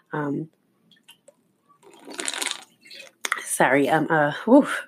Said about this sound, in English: Drowning in this water right now. Trying to stay hydrated. I want to say this is the most I have drank like the past week. I'm trying to detox, so staying very hydrated.